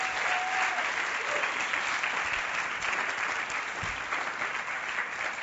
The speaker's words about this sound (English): Beautiful. Give these three a round of applause.